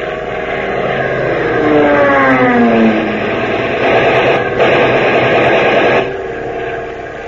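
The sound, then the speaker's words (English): A Japanese fighter plane's engine roars as it dives, its whine sliding downward in pitch, then a loud, dense stretch of noise like strafing machine-gun fire before the roar drops back. No one speaks. “Watch that plane. It's diving.”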